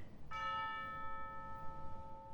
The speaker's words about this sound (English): I go, and it is done. The bell invites me. Hear it not, Duncan, for it is a nail that summons thee to heaven or to hell.